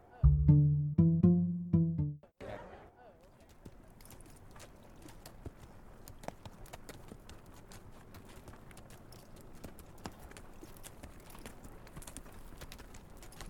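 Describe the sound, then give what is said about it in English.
A brief tonal sound gives way to horse hooves clip-clopping steadily for over ten seconds, a continuous run of uneven hoofbeats at a moderate, even volume. “I'll get the horses.”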